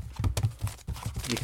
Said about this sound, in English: You can hear it. It's my little notepad booklet thing of point form bullet notes that I take usually when I'm doing a podcast.